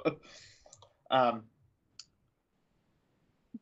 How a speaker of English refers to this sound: You would be able to hear my keyboard. See, listen. That's true. Yeah, okay. You can hear him clickety clacking. Mechanical keyboard.